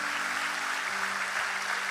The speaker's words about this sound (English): Come on, let's clap for everybody that said that.